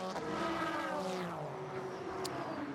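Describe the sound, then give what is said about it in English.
A GT race car, running second among the GT cars, roars past underneath the commentators, its high-revving engine note sweeping downward as it goes by, loud and continuous over the whole moment, with no voices. “Through goes Madison Snow underneath us, second of the GT cars.”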